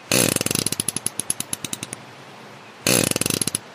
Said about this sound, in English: And just in case you're terminally disappointed that you didn't hear what a farting fish sounds like, we've got the sound just for you.